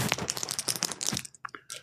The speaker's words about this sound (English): Sound like dice, but they're marbles, glass. If I was to throw one of these, right, you would feel it, right? You hear that, right?